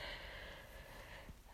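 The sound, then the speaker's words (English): A person yawns, a drawn-out breathy exhale lasting over a second that fades near the end, with no talking. “And so, excuse my yawn.”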